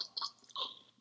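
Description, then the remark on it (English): A person drinks water, making two short wet gulping, swallowing sounds about half a second apart, fairly faint and with no talking. “That was my water.”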